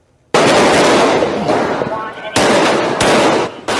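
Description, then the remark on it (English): Loud gunshots ring out in sharp bursts amid a dense, noisy wash of sound, with several distinct cracks over a few seconds and muffled voices mixed in, recorded on a Miami-Dade police officer's body camera outside a building at the Trump National Doral Resort during a confrontation between officers and a gunman. “The officer wearing the body cam is outside a building when you hear the first gunshots.”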